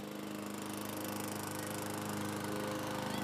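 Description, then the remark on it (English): A lawn mower engine, mowing grass, drones steadily and loudly throughout, its motor producing a constant buzzing hum with harmonic tones and a slight rhythmic flutter, with no voices present. “Well, all I see out there are a bunch of kids and a stupid lawnmower.”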